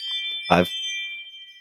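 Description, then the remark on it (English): A front-door doorbell chime rings with a bright, high, sustained tone that hangs steadily throughout, interrupted by a brief louder burst of sound partway through. “I've had somebody's at the front door.”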